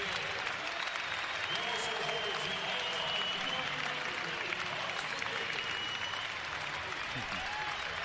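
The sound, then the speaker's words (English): The BYU crowd at the Marriott Center applauds steadily in a sustained, dense standing ovation for Sean Bradley during a basketball game, a broad roar of clapping and cheering holding level for several seconds with scattered whistles and shouts. “Sean's now been introduced to the BYU crowd and the Cougar crowd, giving Sean a well-deserved standing ovation here at the Marriott Center.”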